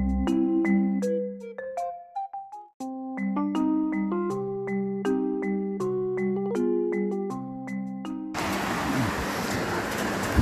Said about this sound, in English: Please keep in mind, just a quick apology there. It's raining over here, so you probably can hear the rain pouring down this side.